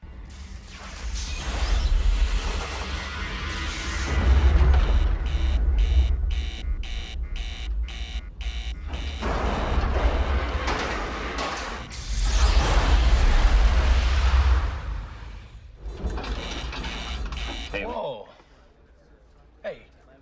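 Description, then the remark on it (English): A loud, rumbling spacecraft explosion from a film scene about Jim Lovell's 1970 moon mission, as the craft travels toward the moon, with deep sustained roars, a rapidly pulsing alarm buzzer, and whooshing bursts, fading to quieter rumble at the end. “And in that movie, they're traveling toward the moon, and all of a sudden there's a terrible explosion.”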